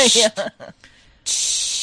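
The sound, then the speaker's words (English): Two short bursts of an aerosol wound dressing spray hiss as it is sprayed on someone, a quick spritz then a longer steady one, fairly loud, with brief voiced sounds in between. “So I spited him with wound dressing.”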